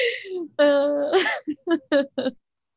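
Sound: big yawn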